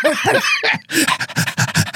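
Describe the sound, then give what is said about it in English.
A person imitates a panting dog with quick, rhythmic, breathy huffs, preceded by a brief voiced vocal sound and a short pause. “And the clit like wags its tongue like a dog.”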